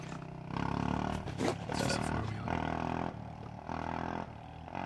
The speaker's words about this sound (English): No, it's a four-wheeler, like, ripping it up the road.